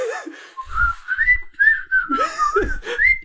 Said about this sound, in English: See, what I was thinking is, like, you know how, like, people whistle when they work?